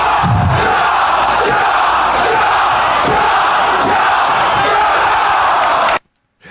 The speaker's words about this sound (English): I always love the, like, local indie guy that the crowd just loves the way that, like, the noise they make when they make punching sounds. Shaw, shaw. Like, I don't know what's going on there, but that's awesome.